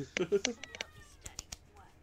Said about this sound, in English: My cat likes to make guest appearances on podcast recordings. It's great.